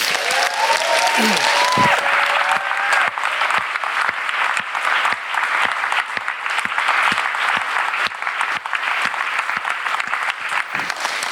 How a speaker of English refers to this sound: They've laughed and they've cried, and we couldn't have done it without them. Can we just honor them with a huge round of applause?